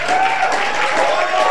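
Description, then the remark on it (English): An audience bursts into loud, sustained applause to celebrate a woman they call mommy, a dense steady wash of many hands clapping, with a faint held tone and some voices mixed into the noise. “I want us to celebrate our mommy with a big, big, big, big round of applause.”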